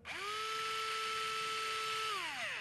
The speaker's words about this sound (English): When they're first learning the skill, it's just a tibial bone. Okay. But and they practice. We come all together. With the drill. Yes. And they practice starting the IV. Correct. Let's hear that drill.